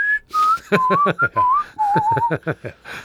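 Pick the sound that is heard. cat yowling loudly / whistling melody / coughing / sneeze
whistling melody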